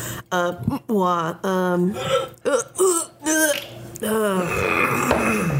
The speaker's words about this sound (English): This is a disgusting podcast. I'm sorry, everybody. The fart noises. Everybody, I'm really sorry.